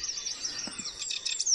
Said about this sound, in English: Listen to the birds. Pretty nice, aren't they?